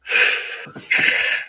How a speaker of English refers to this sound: Hey, I'm just sitting here breathing.